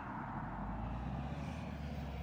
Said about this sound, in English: I'm just going to wait for this car to go past.